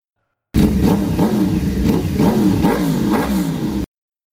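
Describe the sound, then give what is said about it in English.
Several dirt bike engines, 15 Yamahas and Kawasakis, roar and sputter together as they are fired up, revving up and down in uneven bursts, loud for a few seconds, with no voices. “Human controllers were firing up the motorcycles. I could hear the sputtering roar of the engines.”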